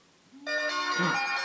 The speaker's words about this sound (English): What's going on? Does your phone ring? It is. Who is it?